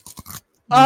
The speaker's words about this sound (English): To indicate how good I am, I'm eating a cucumber, so you all know I'm doing fine. Oh, damn, you got that fresh vegetable, son? Check this ASMR.